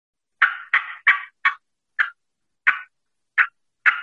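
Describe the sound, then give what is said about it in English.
Eight sharp, raspy clucks of hen turkey cutting made on a mouth call, bunched quickly at first and then spaced out irregularly. Mid-pitched and fairly loud against silence, with no talking. “And to do the fly down cackle, all I'm doing is cutting, but I'm coming out of the limb cutting, and cutting means I'm going cuck, cuck, cuck with the mouth call.”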